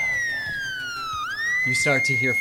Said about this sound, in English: You get a slight shock, and all of a sudden you hear. Like through the whole facility loud, or just in his own head? No, the facility is alarming.